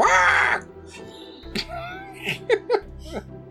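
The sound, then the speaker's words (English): A person imitates the cat Felker's bird-like squawk with a loud, harsh cry, followed by a few shorter squeaky yelps and bursts of laughing breath. “He squawks, like a bird.”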